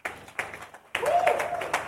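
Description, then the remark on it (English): A short burst of audience clapping for a young painter starts, briefly drops away, then swells again into a fuller round of applause with some crowd voices mixed in. “Clap for him for me.”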